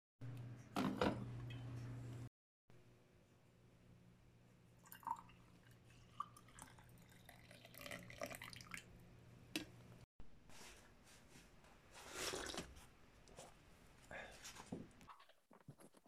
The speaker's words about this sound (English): Okay, let me pour my coffee first.